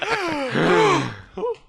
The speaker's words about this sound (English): Maybe … gasp should just become the sensor noise.